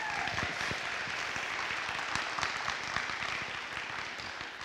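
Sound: audience applause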